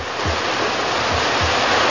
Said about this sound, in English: Pumpers are ready. All the hoses coupled up. We'll flood that thing with water from all angles. All right, here's the signal. Open them up! Full blast!